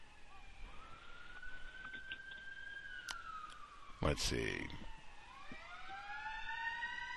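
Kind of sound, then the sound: vehicle, fire truck siren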